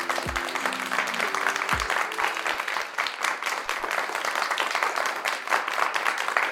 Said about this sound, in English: Before we begin, we'd like to give a round of applause to all of our new and consistent listeners.